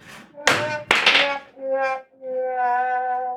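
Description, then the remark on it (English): A brassy, buzzing horn plays a few short notes, then a last drawn-out one, a mournful "wah-wah-wah" sad trombone sound effect. It is loud, with no talking. “It's the sad trombone.”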